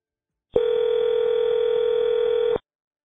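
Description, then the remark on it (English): A steady telephone tone hums for about two seconds as an outgoing call is placed, a single continuous pitch that starts and stops abruptly, clear with no voices. “started calling his contacts from the Dixon area,”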